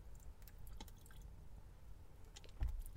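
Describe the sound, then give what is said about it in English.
Quiet sipping of several-days-old Good and Gather Target brand purified drinking water from a bottle: soft wet clicks and small liquid sounds, then a louder gulp or swallow near the end, with no talking. “This is a Good and Gather Target brand purified drinking water. Let's have a taste.”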